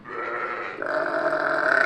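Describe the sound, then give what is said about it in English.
Sheep bleat loudly and continuously in a barn on a sheep farm in rural Bourbon County, Kentucky, overlapping calls with a shift in pitch partway through, with no talking. “It wasn't hard to tell that we were on a sheep farm.”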